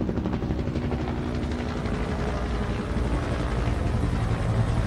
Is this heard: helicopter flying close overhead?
yes